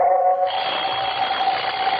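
An alarm clock rings steadily with a loud, continuous electronic tone that brightens after a moment and keeps going without pause, with no voices.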